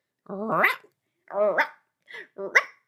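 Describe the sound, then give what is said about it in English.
A person vocally imitates a chicken as if it were a dog, making three or four short, harmonic bark-like yelps with a clucking, squawky quality, each rising sharply in pitch, delivered fairly loud in quick bursts. “Like if a chicken was a dog.”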